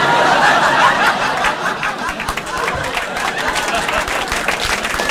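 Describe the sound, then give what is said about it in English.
An audience claps steadily for about five seconds, a dense rattle of many hands, with a few chuckles and murmurs mixed into the applause. “I agree with your applause.”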